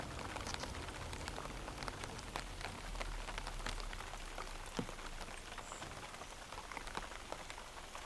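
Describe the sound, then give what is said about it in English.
Steady rain pattering on leaves, a dense wash of soft, irregular drops with occasional sharper taps, continuous and even throughout with no voices. “Do you have any memories with this particular sound of the rain pattering against leaves?”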